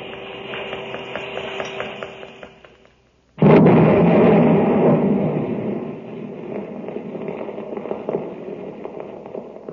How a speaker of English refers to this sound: There it goes. Three whole buildings blown to bits.